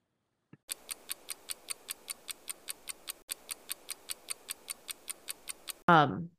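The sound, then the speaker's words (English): A clock ticks in a steady, rapid rhythm, around four crisp ticks per second for about five seconds, clear, before a brief louder tonal burst cuts it off. “We're on the clock.”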